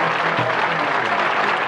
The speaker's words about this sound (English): Thank you so much. Applause for you. Applause.